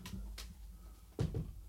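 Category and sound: household object, door being closed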